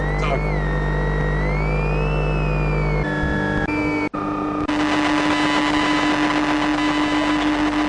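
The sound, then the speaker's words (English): Electromagnetic emissions from a bus: a dense, continuous electrical hum layered with whining tones that bend in pitch, cutting abruptly between textures, with a brief dropout before a steadier buzzing drone takes over. “Oh, that one, Electromagnetic Bus.”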